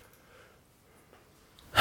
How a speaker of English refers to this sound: I'm going to try this thing. It's a mixed drink, basically, but with diet soda, pretty much. Ooh, okay. Taking my first sip.